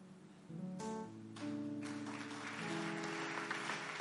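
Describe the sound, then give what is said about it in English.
An audience claps steadily as a clap offering, a dense wash of many hands that swells after the first half-second, with sustained organ-like musical tones ringing underneath throughout. “Increase that clap offering because it's bringing you a miracle.”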